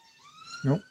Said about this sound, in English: I've got police cars rushing outside my building. I don't quite know what's happening there.